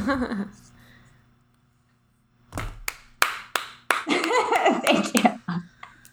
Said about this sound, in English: She's applauding if you can't hear.